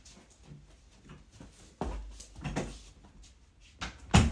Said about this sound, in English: Close this door.